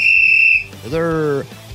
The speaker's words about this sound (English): Hey, blow that whistle, lady.